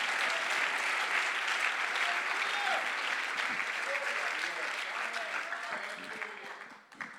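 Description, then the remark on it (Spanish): A church audience breaks into sustained, dense applause for the honor and glory of the Lord, a steady wash of many hands clapping that holds for several seconds before thinning and tapering off at the end. “Un aplauso para la honra y la gloria del Señor.”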